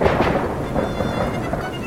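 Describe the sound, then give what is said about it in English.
Steady, heavy rain pours down while thunder rumbles deep and continuous underneath, following a lightning flash, loud throughout, with no voices. “Another flash followed quickly, with earth-moving thunder, showing nothing.”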